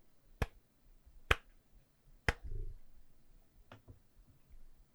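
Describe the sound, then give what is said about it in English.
A slow, deliberate hand clap: four sharp claps spaced about a second apart, the last one softer, with a faint low rumble in the background and no talking. “Everything is silent for a moment, and then Akina starts a slow clap.”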